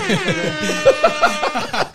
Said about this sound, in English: You know my favorite part of the … was? When he told dude, can you not hit that air horn? Not again while I'm here.